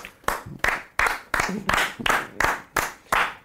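An audience claps together in a steady rhythm, about nine loud, even beats in quick succession, with no voices over it.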